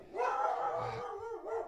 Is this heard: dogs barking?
yes